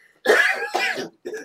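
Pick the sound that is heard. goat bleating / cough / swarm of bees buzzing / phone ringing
cough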